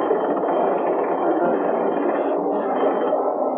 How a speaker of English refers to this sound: Hey, what's that noise out of the water? Dead ahead, sir. It's a submarine. A submarine?